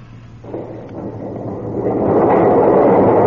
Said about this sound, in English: The doors are opening.